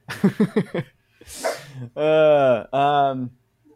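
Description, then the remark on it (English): A dog named Ponyo barks excitedly, freaking out after someone went to grab food from the front: four quick, sharp yips in a burst, then a breathy huff and two long, loud, drawn-out whining howls. “Sorry, my girlfriend went to grab the food from the front, and now my dog's freaking out.”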